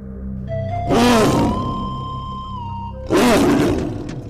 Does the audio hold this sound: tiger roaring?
yes